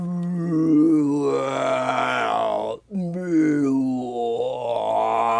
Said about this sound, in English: So I wanted a death song. So we took out all the skids and the crashes of for that little minute-long sequence, and we put in the sounds of dying animals.